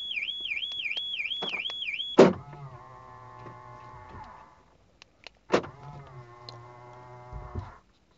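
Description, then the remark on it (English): The speaker's car alarm wails in a rapid up-and-down siren for about two seconds, then cuts out with a loud clunk. Two stretches of electric motor whirring follow, each starting with a sharp thud. The car's front lights are fully on. “It's always nerve wracking when your alarm goes off, isn't it?”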